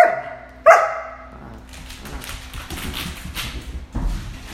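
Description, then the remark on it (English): A giant dog barks twice in quick succession, loud, followed by a rumbling, clattering background and a dull thud near the end. “No way, you're a giant dog.”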